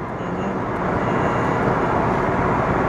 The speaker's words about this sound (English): And a car passing me on the right over here. And it's not a cop. Hallelujah. It's a white truck. Or a Durango or something.